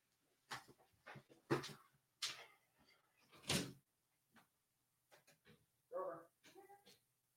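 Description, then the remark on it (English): A door is handled with a few muffled clunks and bumps while a dog is let out, a short whine or vocal sound in between, all fairly quiet. “Okay, sorry, let the dog out.”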